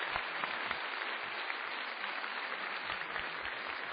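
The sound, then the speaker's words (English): Steady applause from the audience of an Intelligence Squared U.S. debate, a dense wash of many hands clapping at an even level for the whole stretch, with no voices coming through. “Now I need some spontaneous applause from you if you could do that.”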